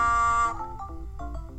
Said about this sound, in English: All right, let's get this cow out of the way by honking our horn.